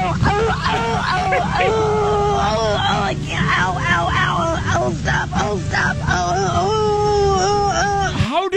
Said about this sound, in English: I mean, that lady sounded like she was dying. Those were real death screams right there as she fell from stomping grapes.